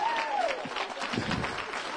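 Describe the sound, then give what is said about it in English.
An audience claps steadily in praise during a church service, a dense and fairly loud patter of many hands, with crowd voices mixed in and a brief sustained tone early on. “Oh, y'all ain't clapping the way you need to.”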